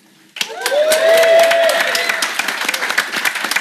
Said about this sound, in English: And, of course, you wonderful audience, please give yourself a cheer.